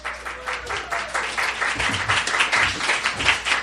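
A crowd at a live evening stage show applauds steadily for several seconds after a game segment, dense overlapping claps forming a continuous bright wash of sound at a fairly even loudness, with a few faint voices mixed underneath.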